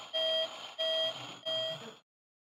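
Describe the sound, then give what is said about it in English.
Three evenly spaced electronic beeps from a vehicle backing up, each a steady loud tone with brief pauses between, over a faint rumbling background; no one speaks. “Now, there's one thing that's very important about a car, and that is reverse.”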